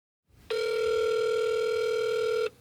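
One ring of an outgoing telephone call to the offices of Jack Puppies Incorporated: a steady, buzzy mid-pitched electronic tone that holds evenly for about two seconds and then cuts off, with no voices.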